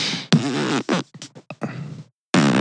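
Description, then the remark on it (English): A voice imitates fart sounds, a string of wet, sputtering raspberries in short and longer bursts, fairly loud, with brief gaps between them. “Fart sounds.”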